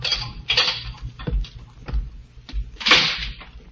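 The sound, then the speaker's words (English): Several sharp, spaced footsteps strike a hard floor in a corridor of a death house, followed by a louder, broader clunk as a door opens near the end. No one speaks. “Then footsteps sound in the corridor. The door opens.”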